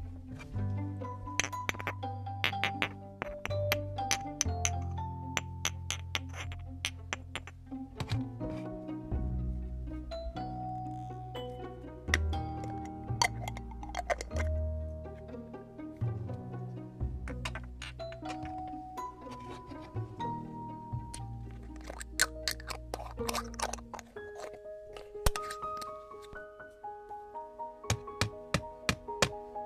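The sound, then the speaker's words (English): An ink bottle is opened and small glass ink bottles clink and tap against each other, bright ringing knocks coming in irregular clusters over half a minute as they are handled and shuffled around, with no talking. “Okay, so those were sort of the clinking around of some ink bottles.”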